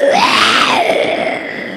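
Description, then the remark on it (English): A child wearing a lion costume and mask lets out a single loud, drawn-out roar imitating a lion, its strained voice rising in pitch and then sliding back down over about two seconds. “You got, your mama should sound like a real lion.”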